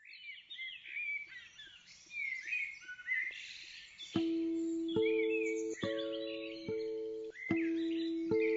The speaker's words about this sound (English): I love this, the way it starts off with birdsong. Hearing birdsong under lockdown is always a little bit plangent. I think that's the word.